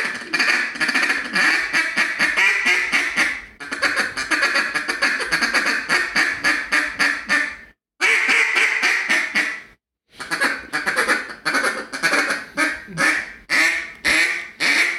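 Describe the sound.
A duck call blown in fast, continuous hen mallard feed chatter, rapid rhythmic quacking pulses running almost nonstop with two brief pauses, loud with no talking.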